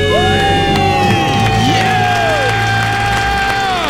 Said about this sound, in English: Count it down. Let's hear a debt-free scream. 3, 2, 1. We're debt-free!